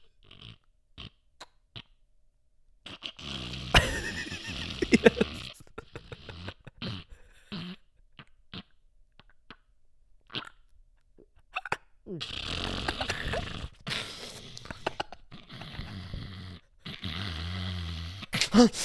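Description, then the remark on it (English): A voice mimics a mother's loud snoring in a string of rough, snorting breaths, some short and choppy, others long and drawn out, with brief pauses between them. “The way your mom snores, she knows she was in there.”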